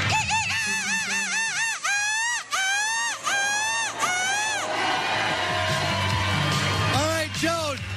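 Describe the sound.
A person imitates a seagull with a string of loud, piercing screeches as the winner of a seagull screeching contest, then a crowd cheers and shouts before two shorter squawks close it out.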